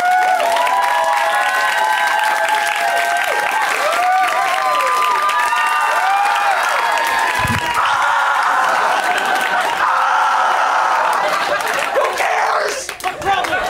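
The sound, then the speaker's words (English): At a stand-up comedy show, a big audience bursts into loud, sustained applause with cheering and whistling, a dense roar of clapping and raised voices that holds steady for about thirteen seconds before thinning slightly at the end. “Okay, all I need from you is a huge round of applause as you would for a man.”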